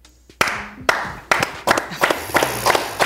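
A person claps their hands, about eight sharp, crisp claps that start spaced apart and quicken toward the end, with faint voices underneath.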